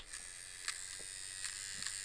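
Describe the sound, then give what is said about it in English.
A weed whacker's string trimmer buzzes steadily and loudly for about two seconds, a high, raspy motor whine with a few brief clicks and flutters, no voices. “Let me find it in here, this tickle trunk, the weed whacker.”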